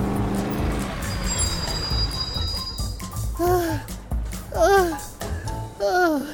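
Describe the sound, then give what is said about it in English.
A manual-shift truck's engine roars steadily as it is driven at full throttle through busy traffic noise, with a brief high whine early on, while excited voices cry out in short bursts over the rumble. “Punch the gas! Watch out! Look out! Coming through!”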